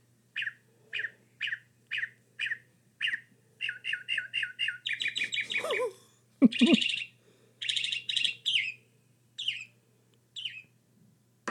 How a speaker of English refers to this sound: How rude. I'm talking over this beautiful bird call.